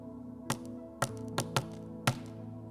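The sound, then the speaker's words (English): Five soft knocks on a door in an uneven, unhurried rhythm, light, with a quiet steady hum in the background and no voices. “I think this is what Jesus' knock could sound like.”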